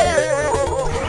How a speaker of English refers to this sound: And, of course, barking attack dogs with realistic barking voice sample.